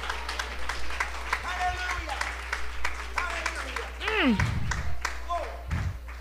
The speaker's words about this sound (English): Come on, somebody. Why don't you clap your hands unto Jesus?